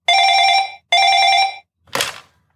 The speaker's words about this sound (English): The phone is ringing, sir.